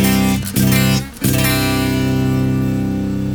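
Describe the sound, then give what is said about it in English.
A clean electric guitar plays loud, rich chords, with two brief dips as it is restruck, then one chord rings out and sustains steadily to the end. No one speaks. “And here is our clean tone.”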